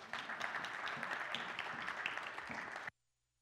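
A crowd bursts into steady, dense applause, many hands clapping at once in a broad crackling wash for about three seconds before it cuts off abruptly into silence.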